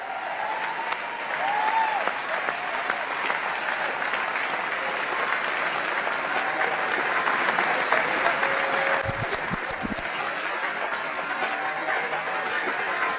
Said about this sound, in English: and take a look at the way that he welcomes her to the stage. Crazy. It was the largest applause I've ever heard.